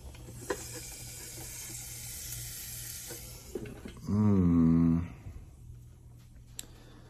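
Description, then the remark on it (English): Steady, crackling sizzle of fish frying in a pan for a few seconds, then a brief loud, low humming tone with a wavering pitch cuts in before the quieter hiss resumes. “Well, that's when you know it's gonna be a good fish fry.”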